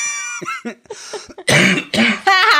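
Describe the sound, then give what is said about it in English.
A harsh coughing fit brought on by laughing: several rough coughs in quick succession, loud, with raspy throat-clearing bursts between them and no speech. “See that? I heard that. See, that brings it back now, laughing.”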